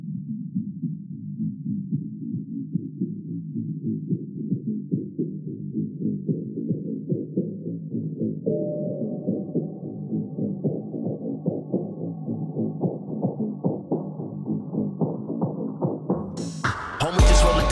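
A muffled, bass-heavy hip-hop track thumps along with a steady pulsing beat; a fuller layer joins about halfway through, and it ends with a brief harsh burst of noise.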